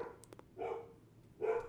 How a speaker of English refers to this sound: Ooh, dog's barking. Ooh. All right, we'll just wait out the dog barking.